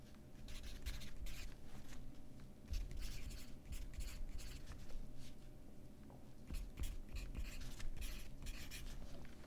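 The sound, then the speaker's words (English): A pencil scratches across paper in quick, irregular strokes for several seconds, with brief pauses between bursts, over a faint steady background hum and no voices. “Where's my pencil?”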